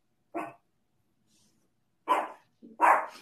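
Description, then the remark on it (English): A dog barks three times, sharp: one bark, a pause of over a second, then two more in quick succession. No voices are heard alongside it. “Even my dog is agreeing with that this morning.”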